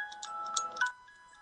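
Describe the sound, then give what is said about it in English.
A small bingo bell rings rapidly for about a second, its bright metallic strikes blurring together, then a clear tone lingers and fades. It is fairly quiet, with no voices. “you got your little bingo bell there”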